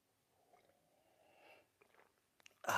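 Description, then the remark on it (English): Quiet slurping sips from two people drinking at the same time, soft wet mouth sounds over a couple of seconds, ending in a sudden louder clatter-like burst, with no talking. “This is the simultaneous sip. This is the real one. Go!”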